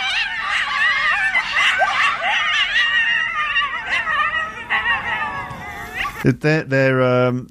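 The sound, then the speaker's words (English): Several cats yowl and caterwaul in overlapping, wavering cries that rise and fall like human screams, loud, ending in a sharp, strained howl. “They sound a bit kind of hysterical. And they also sound like kind of people screaming.”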